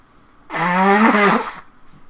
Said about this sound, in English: So, after this interview... I gotta blow my nose. This is gonna be gross.